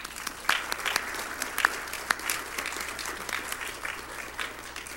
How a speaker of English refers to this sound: But we want everybody here to stand up. And first of all, we want to give her some applause.